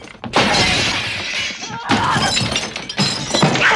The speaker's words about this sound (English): So much broken glass.